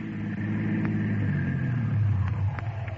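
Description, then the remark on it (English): A car engine rumbles steadily and grows a little louder as the car approaches after being flagged down, its pitch rising briefly before it eases off as it comes to a stop. No voices. “I mean, how do we grab the car?”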